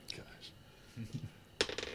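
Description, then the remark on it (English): Dice clatter onto a hard tabletop with a sharp strike and a quick rattling tumble, rolled for an attack in a tabletop game and landing on a one, following a few lighter clicks and faint, low voices in the background. “Throw away those dice.”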